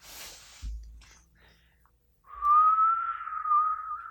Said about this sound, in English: Do you hear that whistle? Do you hear that whistle on the wind? What's that sound? It's a whistle.